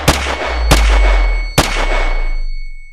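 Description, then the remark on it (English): Loud, sharp gunshots, told as a man shooting his grandmother four times in her house, fire in uneven succession, each a sudden crack followed by a ringing, hissing tail that fades out after the last shot. No one speaks. “Riva then raised the gun and shot her 4 times.”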